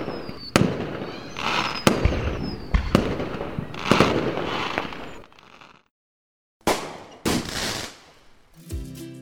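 A fireworks sound effect: a rapid series of sharp bangs and crackles, loud, with a brief silent gap before a final cluster of bursts.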